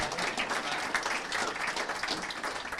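A room full of people claps steadily, a dense, even wash of applause that holds at a consistent level throughout without any voices breaking through.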